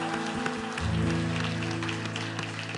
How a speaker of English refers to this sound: Didn't our boys and girls do such a great job? Let's give them one more round of applause.